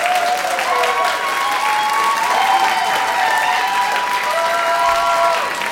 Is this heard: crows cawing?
no